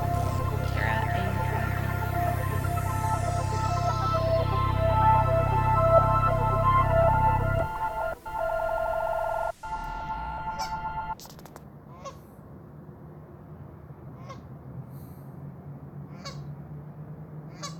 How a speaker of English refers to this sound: The sounds you're listening to were recorded in the Edmonton River Valley.